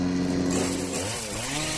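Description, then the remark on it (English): A Green Machine 62-volt battery-powered chainsaw runs steadily, then its pitch dips and climbs again as the throttle shifts. The whine is continuous and loud for under two seconds, with no voices. “This fleet of sleek, stylish, and supercharged lawn care solutions has it all, from self-propelled mowers to string trimmers, chainsaws, blowers, and even combo kits.”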